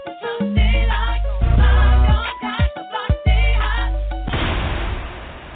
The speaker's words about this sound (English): Oh my goodness, I can't tell you each and every time I hear that explosion, it lets me know that we're ready for something brand new.